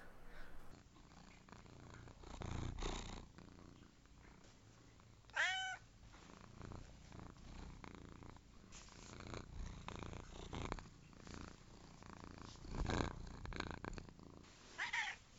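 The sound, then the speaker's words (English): A female cat named Hadassah purrs steadily, a continuous low rumbling that swells and fades, with a couple of brief higher meow-like chirps breaking through. No one speaks. “And she has offered the opinions of her cat, Hadassah.”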